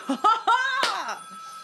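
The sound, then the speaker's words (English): A mobile phone rings with a short, bright melodic ringtone: a few quick tonal bursts and a falling chirp, clear, with no one talking over it. “I was just about to turn my phone off.”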